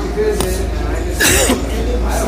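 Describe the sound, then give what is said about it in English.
A short, breathy cough bursts out once at a restaurant busy with customers, a loud noisy rasp lasting a fraction of a second, preceded by a faint catch of breath over steady low background hum. “A little bit of a cough there.”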